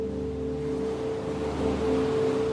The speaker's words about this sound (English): Can you hear the waves of the beach? Are they big waves or little waves today?